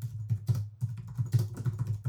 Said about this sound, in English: That was me genuinely typing. That was like wild, enthusiastic typing there. I love it. I was trying to be louder so you'd all hear the activeness.